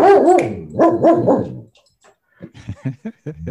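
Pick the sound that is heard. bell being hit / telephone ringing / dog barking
dog barking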